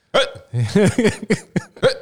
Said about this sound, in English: it's only got hiccups.